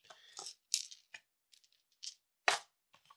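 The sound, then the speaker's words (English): A ten-sided die (D10) is rolled and clatters and rattles across a hard surface in a quick burst of sharp clicks, followed by a few scattered taps and one last bright knock before it settles, showing a 10. “So, D10, civilizations. So I've rolled a 10.”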